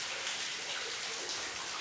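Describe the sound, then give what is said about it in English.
Water drips and trickles all around inside a pitch-black tunnel in a steady wash of hiss. No single drops stand out from the constant, fairly quiet background, and nobody speaks. “It was pitch black, and the sound of the dripping water came from all around.”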